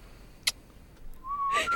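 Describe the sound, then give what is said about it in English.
A brief click, then a thin, breathy whistle that swells into a short wavering tone and grows louder and airier at the end. No one speaks. “I actually can't whistle.”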